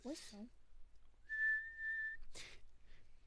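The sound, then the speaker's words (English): A person whistles one steady, clear high note for about a second, fairly loud, with brief bursts of speech just before and after it. “Whistle?”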